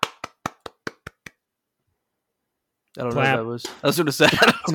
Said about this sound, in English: Which one clapped? I almost did it. I almost went clap, clap, clap.